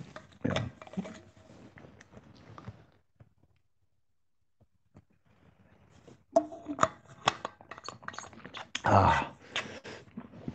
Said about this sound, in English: So I'm enjoying this water. It is very tasty, and because it naturally quenches my thirst, somehow or other. This thirst, which plagues me, is then totally removed and relieved.